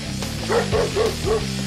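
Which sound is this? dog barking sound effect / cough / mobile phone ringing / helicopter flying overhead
dog barking sound effect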